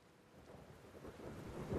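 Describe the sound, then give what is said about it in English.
Steady rain pours down in a dense, hissing wash, with a low rumbling undertone like distant thunder, growing slightly louder toward the end. No voices are heard. “It's raining chocolate sprinkles.”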